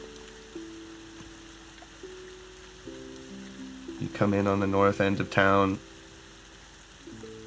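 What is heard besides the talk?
pouring rain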